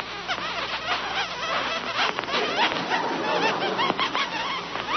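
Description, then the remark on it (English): A bicycle tire creaks with a steady run of rapid, high-pitched squeaks that chirp and warble continuously for several seconds at a fairly even loudness, with no talking. “I can hear one of the tires creaking.”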